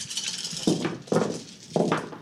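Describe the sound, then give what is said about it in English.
Dice rattle and clatter in three quick bursts over a steady scatter of small clicks, like handfuls of dice tumbling across a hard surface, as players roll, including eight bonus dice for each of two players. No voices. “So eight bonus dice for both of you. Okay, let's roll.”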